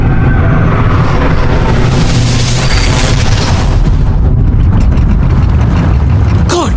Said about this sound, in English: The signals of Woking Railway Station.